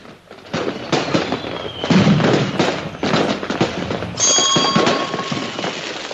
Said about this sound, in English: All right, I'm going to light fireworks.